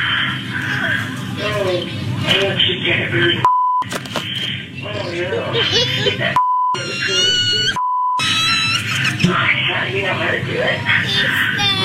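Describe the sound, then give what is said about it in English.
Loud, frantic shouting and crowd noise at a Target store get cut three times by a steady, pure censor bleep, each lasting around half a second to a second, replacing bursts of swearing. “Okay, the fact that half of that clip needs to be beeped is...”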